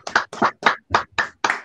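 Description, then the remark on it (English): Applause from an online event audience who have unmuted themselves, heard as about six evenly spaced, muffled clapping bursts in a steady rhythm, moderately loud and somewhat compressed, with no talking over it. “I'd like to, if you could unmute yourselves and just give a round of applause.”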